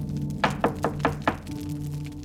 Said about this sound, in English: When the festive atmosphere was interrupted by a knock at the door, the room fell silent.